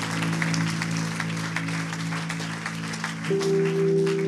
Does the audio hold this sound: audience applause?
yes